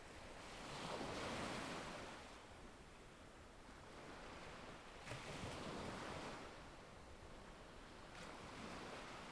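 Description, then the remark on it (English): Ocean waves break and wash onto a beach of small black rocks below cliffs in slow, broad surges, a steady roar swelling and receding every few seconds, with some wind noise and no voices. “You sit down a small distance away from the breaking waves.”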